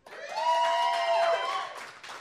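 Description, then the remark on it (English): An audience votes by applause, breaking into applause and cheering, with a sustained high whoop riding over the noise for about two seconds before it tapers off. “By applause, does he read the nutritional information?”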